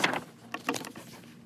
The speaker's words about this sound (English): All this turning pages right in the microphone is not going to sound very good.